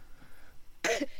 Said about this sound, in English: It's the Spurs match that's making me cough.